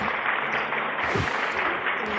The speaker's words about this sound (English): That's the clap for you.